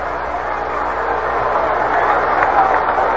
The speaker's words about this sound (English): Mets trying to rally, trying to come back. Fingers throws outside and high. Ball one. And now the open crowd becomes a little restive.